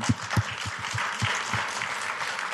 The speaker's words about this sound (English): Well, let me start out by saying a word of thanks to you for your leadership. And I think that does deserve a round of applause.